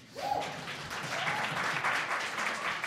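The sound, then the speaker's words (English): A crowd claps steadily, a dense, even patter of many hands that holds at a moderate level for a few seconds without any talking. “You can applaud.”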